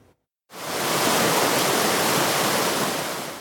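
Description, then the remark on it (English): A creek running high and fast, a loud, steady rush of water close by that kicks in abruptly after a brief silence and roars on without any voices. “The Regional District of North Okanagan is warning residents that BX Creek is running high and fast and could potentially spill over its banks.”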